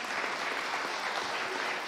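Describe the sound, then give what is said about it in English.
A short stretch of light, scattered applause from a small audience, a soft steady patter of many hands clapping with no voices over it. “That little hand clap sounded like on the 18th hole of the U.S. Open golf tournament.”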